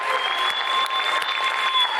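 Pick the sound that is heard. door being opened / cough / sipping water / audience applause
audience applause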